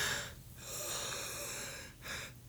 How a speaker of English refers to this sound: I can't pronounce it because I was yawning halfway through